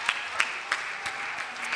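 A short burst of audience applause, with steady, evenly spaced claps standing out over a soft wash of clapping and room noise, moderately quiet and fairly close.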